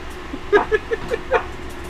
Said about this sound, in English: No, I farted. It's a big difference. Well, that's got some heat behind it, especially with the fan off.